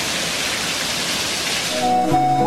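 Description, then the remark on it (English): Water roars out of a burst pipe into an apartment building in a loud, steady, hissing torrent, unbroken, with a few sustained notes of added theme music rising over it near the end. “The guy who shot this crazy video of a burst pipe posted it on social media”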